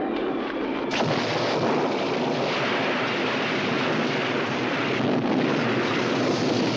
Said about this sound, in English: It was a violent summer storm.